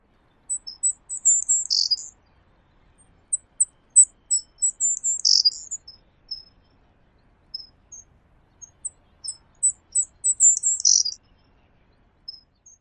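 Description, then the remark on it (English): A Savannah Sparrow of the Belding's form sings three times, each song a run of thin, high insect-like buzzes and chips ending in a trill, heard clearly alone with short pauses between. “Here is the Beldings.”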